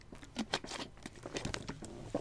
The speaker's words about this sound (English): I'm gonna sip some water.